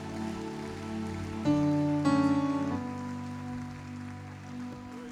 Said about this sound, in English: Praise the Lord. If that clap was for me, do a better one for Jesus. Do a better one for Jesus. Come on, do a better one for Jesus.